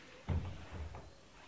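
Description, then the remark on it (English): A few soft, muffled knocks, low and dull like knuckles on wood, spaced unevenly over a second or so against a quiet background with no one talking. “Knocking.”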